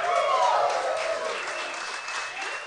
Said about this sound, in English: Yeah, you're applauding your own good fortune... That's a great thing to applaud. No, yeah. That's what people should applaud.